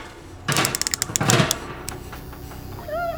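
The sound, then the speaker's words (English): A quick burst of knocking on a wall to make a door open, a rapid cluster of sharp taps lasting about a second, followed by a lone knock and then a brief, high, wavering cry near the end. “Keep knocking the wall. The door will open.”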